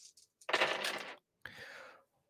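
Dice for a role-playing game clatter and rattle across a hard tabletop in two bursts, after a few light clicks, with a short pause between the tumbles, as a player rolls to resolve a shooting action.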